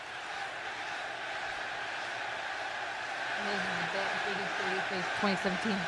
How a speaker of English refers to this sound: Like, y'all really cheering for that? I was expecting boos.